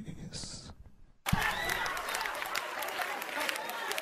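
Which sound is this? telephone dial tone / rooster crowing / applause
applause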